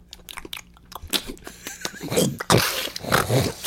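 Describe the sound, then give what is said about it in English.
Wet, squelchy chewing and biting of pickled pig feet from a gallon-sized jar, with sharp crunches and slurps, growing louder and more intense toward the end, no speech. “And as for my dish, I have a gallon-sized jar of pickled pig feet. I'm going to devour and let y'all listen.”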